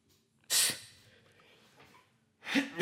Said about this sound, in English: Excuse me. God bless me. Why the hell I gotta sneeze for you to say God bless you to me? Huh? Do I have to sneeze all the time so I can get some type of blessings around here?